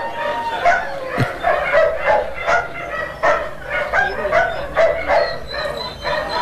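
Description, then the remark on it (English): Several dogs bark and yip in a rapid, excited chorus, mixed with higher whimpering cries, continuous for several seconds with no speech. “And we're going to have to reassess that sting because they don't sound like very happy dogs.”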